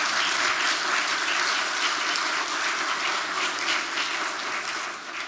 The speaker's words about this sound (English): Now I want you to give them a clap offering.